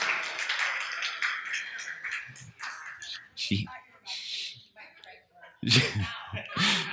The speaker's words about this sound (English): That's my wife. Guys, clap. Come on.